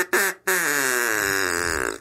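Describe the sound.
A duck call gives a short reedy quack, then a long, buzzy, drawn-out quack lasting over a second. It's loud, with no talking.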